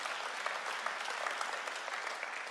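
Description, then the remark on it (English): A crowd applauds steadily, a dense wash of many hands clapping at an even, sustained level with no voices standing out. “Because we clap for the second statement.”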